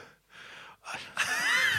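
Close, heavy panting: a few quick breathy exhalations that grow louder, ending in a long, strained, raspy breath. No talking.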